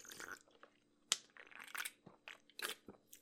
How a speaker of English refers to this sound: Let me sip my Monster for a second, please.